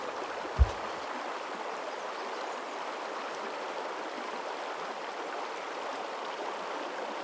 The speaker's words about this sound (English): Be aware of your rhythm, of the flowing water. The water is crystal clear. It flows over and over again.